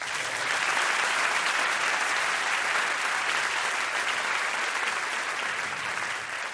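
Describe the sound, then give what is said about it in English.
A debate audience breaks into sustained applause at the conclusion of debate on a resolution, a dense, steady wash of clapping that holds at an even, fairly loud level for several seconds with no talking over it. “So get ready to applaud spontaneously when I say, and that concludes debate on this resolution.”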